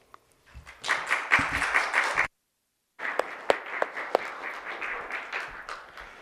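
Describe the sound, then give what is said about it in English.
An audience claps in a dense, steady patter that swells quickly, cuts out briefly, then resumes a little softer with a few sharper individual claps standing out. No one speaks. “I appreciate y'all clapping because I was fixing to ask you to if you didn't.”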